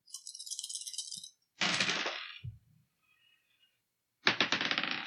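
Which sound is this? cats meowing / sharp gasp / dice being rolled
dice being rolled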